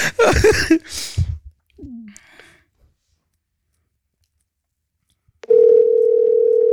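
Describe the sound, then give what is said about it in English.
After a few brief rustling, handling noises and a faint click, a loud, steady telephone dial tone cuts in abruptly and drones on unbroken until the end. “The guy will pick up.”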